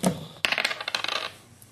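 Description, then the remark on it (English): A die is rolled across a hard tabletop for a dodge roll in a game: an initial knock, then a quick burst of rattling bounces that settles within about a second. Crisp, with no voices. “You need to roll a dice, dodge that.”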